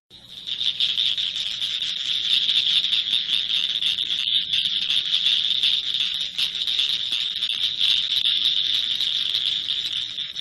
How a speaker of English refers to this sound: Sounds like the Blanchard cricket frog. That's a species of cricket frog that you find in this area. And so that species is actually super common here in a lot of the urban areas.